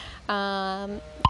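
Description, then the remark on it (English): A phone notification beep rings out once, a steady, buzzy electronic tone lasting under a second, fairly loud, then a brief soft thump right after. “Gotta turn my volume off of my phone”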